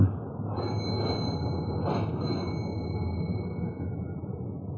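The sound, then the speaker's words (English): A doorbell at house number 16 in Santa Monica, rung from the porch, sounds with high, sustained chiming tones that hold for a few seconds, brightening twice early on, over a steady low rumbling background. “Well, let's try the bell.”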